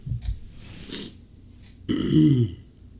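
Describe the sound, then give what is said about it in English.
A single loud, drawn-out burp rumbles for about half a second, preceded by a few soft throaty breaths and small mouth noises, from a person after eating a Trinidad Scorpion Butch T hot pepper. “I think I got the hiccups cured.”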